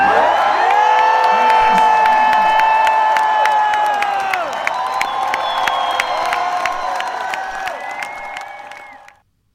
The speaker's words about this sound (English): I just want to hear one big cheer for somebody. I want to hear a big cheer for ….